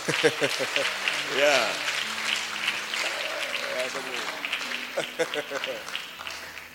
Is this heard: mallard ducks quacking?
no